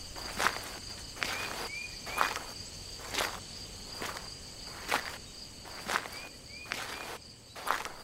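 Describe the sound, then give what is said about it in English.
Footsteps walking through woods at night on the way back to a cabin, about nine crunchy steps at a steady, unhurried pace, over a constant high chirring of crickets and insects with a few faint chirps. “You head back to the cabin before dark, through the woods.”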